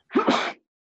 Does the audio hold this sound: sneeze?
yes